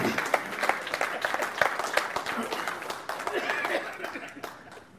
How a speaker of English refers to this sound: And let's give her a round of applause as she comes to be our first guest over here.